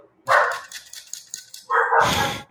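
A dog barks twice, loud, with a brief stretch of quieter yips and rustling between the two sharp outbursts.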